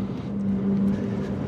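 A car engine runs steadily after the car pulls over around a corner, a low, even hum with a faint tonal drone that holds at a constant level throughout, with no voices.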